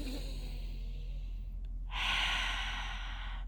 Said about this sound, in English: Really focus on pushing all of the negative energy out from your body when you are breathing outwards. One more.